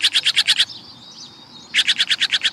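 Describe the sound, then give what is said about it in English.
A harsh, rapid series of blue jay calls, about six quick notes, breaks off for a moment, then returns as another fast burst. Loud, with no talking. “When you hear a raucous call and see a bold flash of blue swoop to your bird feeder, you'll know a jay has arrived, and all the little birds dart for cover.”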